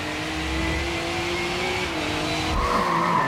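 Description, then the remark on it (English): Engines roar continuously as race cars speed past in a racing video game, with sustained tire squeal and skidding layered over the rumble, loud, no voices. “Racing is more immersive and dynamic. Ominous skies roll in as car parts rattle and vibrate.”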